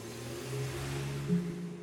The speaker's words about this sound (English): I was thrust into a waiting motor car that marked the beginning of my journey to Greenheart Home.